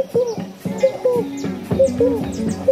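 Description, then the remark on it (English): A frog in a forest calls over and over in a steady rhythm, each short call a hollow, wavering mid-pitched note, with faint high chirps from other creatures overlapping in the background. No one speaks. “There was this frog making this sound.”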